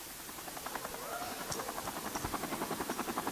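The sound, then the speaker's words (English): A helicopter draws closer, its rapid rhythmic rotor thumping growing steadily louder over a broad whooshing roar, with no voices present. “He's jumping out of a helicopter.”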